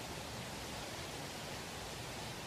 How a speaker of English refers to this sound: I think it's to do with the noise of the water. I don't know if you can hear it.